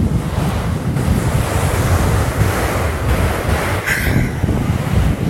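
Ocean waves wash steadily onto a beach in a continuous roar, with wind buffeting the microphone and a brief hiss of breaking surf near the end. No one speaks.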